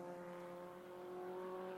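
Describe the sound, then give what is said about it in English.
Several race car engines drone steadily as the cars get back up to speed leaving the pit lane, a sustained harmonic whine that holds its pitch for a couple of seconds with no voices over it. “So getting back up to speed now, and everyone has gone out of the pit lane, as you might imagine.”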